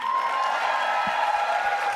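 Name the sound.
audience applause and cheering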